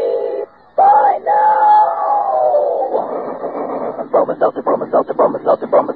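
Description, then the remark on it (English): A steam-train effect in a Bromo Seltzer advertisement: a sustained, wavering whistle tone, then a steady, rapid chugging rhythm of repeated puffs that seems to chant the product name Bromo Seltzer like a locomotive. Both are loud. “You can take it straight from our educated Bromo Seltzer train, friends.”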